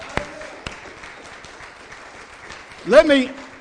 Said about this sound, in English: We are blessed, amen, to have good, godly mothers. If you believe that, give the Lord a hand clap.